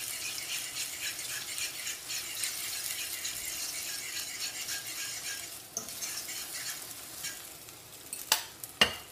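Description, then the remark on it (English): A steady, crackling sizzle of a drip of egg in hot oil, used to test whether the oil is hot enough, moderately loud, with a couple of sharp clicks of a utensil near the end and no talking. “And in China, when I was young, we have a way to try to see the oil is hot enough or not. I use a drip of egg.”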